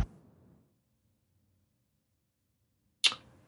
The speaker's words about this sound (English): So it's a very short way. I shall knock on the door.